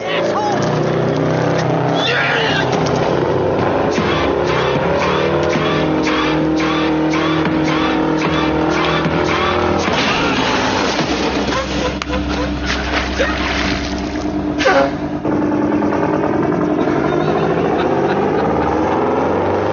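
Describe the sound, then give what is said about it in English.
A heavy truck engine rumbles loudly and continuously for the whole stretch in a movie scene of trucks against a salesman, its low drone mixed with busy scene noise and indistinct voices, swelling briefly near the end. “Great trucks versus salesman scene.”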